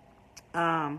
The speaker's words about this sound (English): I see the doorbell rang because I don't know who's at the door. So let's find out.